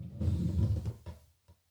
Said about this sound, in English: Open your cutlery drawer. I'm going to do a sound effect. Hang on. So you open your cutlery drawer like this.